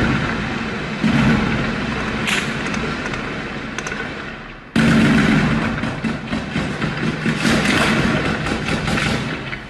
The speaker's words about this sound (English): There's a mix of everything there, right? You heard automatic gunfire. You actually heard anti-aircraft weaponry. And those last couple of shots you heard were from a 50 caliber Barrett sniper rifle.